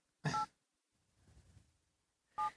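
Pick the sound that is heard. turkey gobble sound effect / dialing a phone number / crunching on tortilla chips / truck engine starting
dialing a phone number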